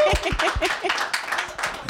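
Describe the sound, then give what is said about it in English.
A crowd at the Nerdtacular event applauds someone walking down a hallway, with steady, dense clapping that stays loud throughout, with a few voices calling out and chattering over the noise. “I'll never shake Nerdtacular because nowhere else can I walk. Hallway and get applause.”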